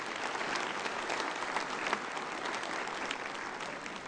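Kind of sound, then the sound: crowd, audience round of applause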